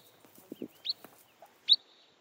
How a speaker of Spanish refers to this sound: Otros pájaros que dependen de las salinas son los cholitejos de nieve. Chorlitos de Wilson.